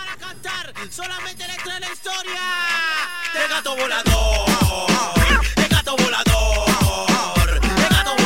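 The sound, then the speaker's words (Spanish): A cat meows repeatedly at a Brazil team press conference during the World Cup in Qatar, in drawn-out, wavering cries, fairly loud, and about halfway through a heavy thumping beat kicks in beneath the continuing yowls. “Bueno, el famoso gato volador, ojo con la maldición.”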